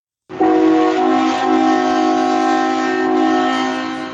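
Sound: train sound effect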